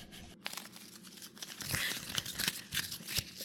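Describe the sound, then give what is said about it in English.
Paper being torn and crumpled, a dense run of crackling, rustling bursts with sharp snaps, growing busier toward the end. No one speaks. “Doesn't it sound like there's a lot of paper there?”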